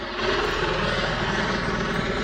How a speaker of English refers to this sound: Hey, thank you for fucking off, helicopter.